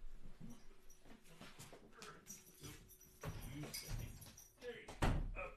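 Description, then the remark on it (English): Dogs shuffle and whine amid indistinct background noise as they are put outside, followed by a door closing with a sharp thud, then another loud knock-like slam near the end. “So I'm gonna kick the dogs out.”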